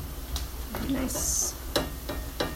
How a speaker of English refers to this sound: Because this is the other thing, is I do often end up over frying onions and then they get too dark and then they're like bitter.